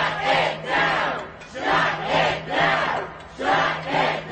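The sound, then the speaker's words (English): A crowd of pro-Palestinian protesters at JFK Airport in Queens, trying to block access for flyers, chants in unison, loud rhythmic bursts of many voices repeating a short slogan about every second, with brief dips between phrases. “Out at JFK Airport in Queens yesterday, pro-Palestinian protesters tried to block access for frustrated flyers.”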